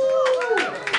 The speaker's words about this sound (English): But that's probably, we should probably double that because some people just don't want to, you don't want to like cheer because you feel like you're in a Bud Light commercial. I'm going to double that applause.